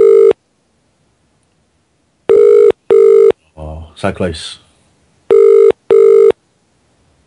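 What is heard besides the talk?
telephone call ringing tone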